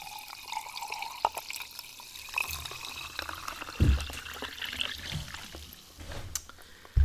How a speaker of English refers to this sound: Some more of me refilling my glass of sparkling mineral water.